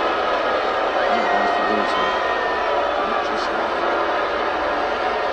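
A large arena crowd cheers as the lights come back on after a blackout, in a steady, dense roar that holds at an even loudness throughout, with a few higher shouts rising briefly out of the noise.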